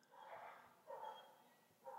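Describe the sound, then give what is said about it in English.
Faint dogs bark outdoors in a few short, separated bursts, muffled against a quiet background. “You hear those fucking dogs out there.”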